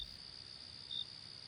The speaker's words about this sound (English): Crickets! Of course! Crickets!